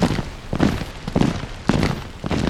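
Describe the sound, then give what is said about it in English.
Heavy, regular footfalls tramp in a steady marching rhythm, each dull thud landing with a crunch over a constant low rumble of background noise. “Marching feet.”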